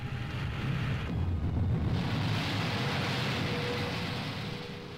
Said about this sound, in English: Then, when the loch was calm and the wind slight, Cobb would climb aboard the Crusader, and a few minutes later, the shrill whine of his jet engines told that another attempt would be made on the world's water speed record.